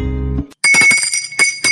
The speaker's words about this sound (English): That's a sorry bell, man. Woo, gotta get a new bell.